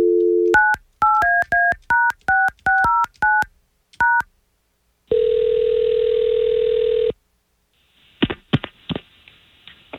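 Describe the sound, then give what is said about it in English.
A quick string of about a dozen touch-tone telephone dialing beeps as a call is placed to a woman, followed by one long steady ring tone and then a few clicks on the line, with no one speaking. “We're going to try to call her right now.”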